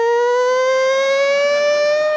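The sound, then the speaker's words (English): A loud siren blares in one continuous, steady wail, its pitch creeping slowly upward over about two seconds, with no voices or other sounds alongside it. “And the siren goes off, like, boo.”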